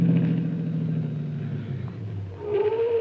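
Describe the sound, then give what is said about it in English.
Miss Miller's car engine rumbles, its steady hum dropping in pitch as the vehicle slows to a stop, with a brief higher whine rising near the end. No one speaks. “There's Miss Miller's car, Chief.”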